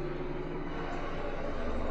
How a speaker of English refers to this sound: As this plane flies over our house. It's so loud.